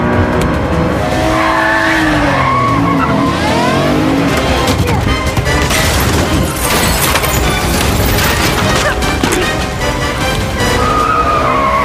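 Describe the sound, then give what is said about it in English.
A car engine revs hard and pulls away as tires screech and skid, with rising and falling engine whine and loud gritty tire noise running continuously for about twelve seconds, no talking. “My plan was to drive us away.”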